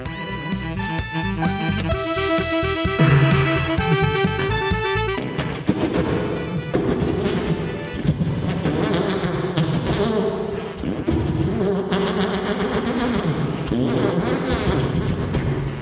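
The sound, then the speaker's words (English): A rapid machine-gun fart played as a fifth-birthday dedication on a birthday party fart hotline: a loud, buzzy stream of fast sputtering pulses that rattles on for several seconds, then turns into a rougher, noisier blast that lasts until the end. “All right, here comes a machine gun fart for Marie on her fifth birthday.”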